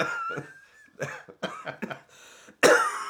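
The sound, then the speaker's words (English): A string of harsh coughs and throat clearing in uneven bursts, several short hacks in quick succession, ending with a louder, raspier cough. “Why did you make me cough?”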